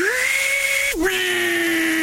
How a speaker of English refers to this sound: Table saw.